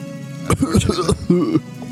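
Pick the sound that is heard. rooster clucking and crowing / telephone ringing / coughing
coughing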